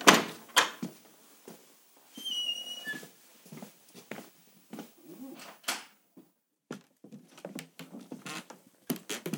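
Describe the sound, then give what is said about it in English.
A door opens into a small library, then footsteps move across its creaking floorboards, with irregular thumps and high squeaks in a quiet, cosy indoor room. “Is it through this door here?”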